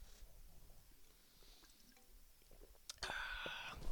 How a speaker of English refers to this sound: All right, with that sip of Dr. Pepper, I think I'm going to wrap this up here.